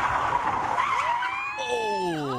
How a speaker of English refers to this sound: It's really just a, you know, you slam the brakes on, whip the wheel, and it whips the car around.